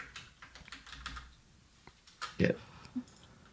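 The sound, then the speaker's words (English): Typing on a computer keyboard that is not working properly and will not add a space: a quick, irregular run of light clicking keystrokes, fairly quiet, with a brief louder burst of sound partway through that may include a short voice. “Sorry, my keyboard's not working, so I can't add the space.”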